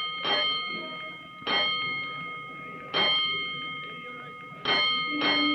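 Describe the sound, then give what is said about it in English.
A firehouse alarm bell of Engine Company 209 clangs five times in an uneven coded pattern, each loud metallic strike ringing on with a bright sustained tone; the last two strokes come close together. “But before he can report to his officer, he hears an alarm, and he leaps aboard 209 as the great engine prepares to roll.”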